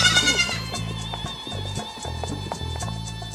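A goat bleats in a long, wavering, quavering cry lasting a few seconds, fairly loud, over low steady tones in the background.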